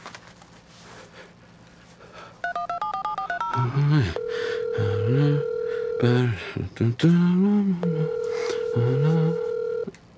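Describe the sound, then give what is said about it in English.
A quick run of a dozen or so telephone keypad beeps as someone dials to phone a friend, followed by two long stretches of steady dial tone. A low voice hums or murmurs underneath, fairly loud. “Time to phone a friend.”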